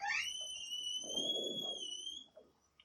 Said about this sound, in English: What was that? Somebody's unleashing the Zerg. Sorry, I shut the back door because there's a bunch of cars about to drive by. It's a slider. It needs to be greased up.